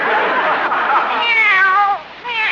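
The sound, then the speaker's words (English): A kitten named Minerva meows loudly, a long wavering cry that bends up and down in pitch, followed after a brief dip by the start of another meow. “She's only a kitten.”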